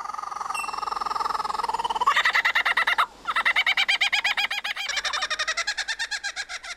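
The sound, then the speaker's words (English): A lyrebird imitates the laughing call of a kookaburra, another Australian bird: loud, rapid rhythmic cackling that rises and keeps pulsing in fast bursts, with a brief pause midway and no voices. “In a BBC Earth documentary, that includes imitating another Australian bird, a kookaburra.”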